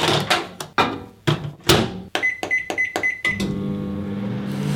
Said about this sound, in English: What is that? That's microwave. Did you put a microphone in my kitchen last night?